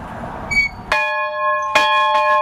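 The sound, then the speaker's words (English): A school bell at the Dickinson County Museum rings, struck three times with bright, sustained metallic tones that overlap and linger between strikes. No one speaks over it. “And ring that bell.”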